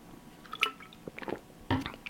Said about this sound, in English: Just going to have a quick drink of water. Bear with me.